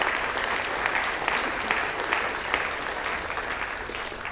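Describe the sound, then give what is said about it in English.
An audience claps steadily for several seconds, a dense, even patter of many hands with a few sharper individual claps popping out, loud throughout, applauding a speaker at a morning gathering. “But what I want to say is, in case you just recovered your hour of sleep because you just woke back up with the clapping, okay?”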